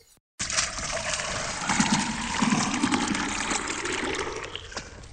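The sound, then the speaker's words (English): Water pours steadily for about five seconds, a continuous splashing trickle with a bright, hissing texture and a slight gurgle, starting abruptly after a brief silence. “Kinda dry. Need water, please.”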